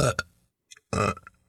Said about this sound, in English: I can tell through your belches that you agree with me.